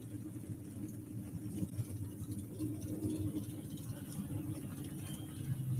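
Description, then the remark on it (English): A pulling truck from Adrian, Missouri, with its engine limited to 485 cubic inches, runs with a steady, deep low rumble that holds an even level throughout, with a faint hiss above it and no voices. “We were telling you these trucks are on 485 cubic inch limit.”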